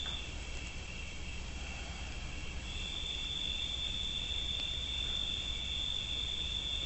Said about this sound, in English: We simply rest present and the crickets come to us singing. The sounds of the world around us come to us.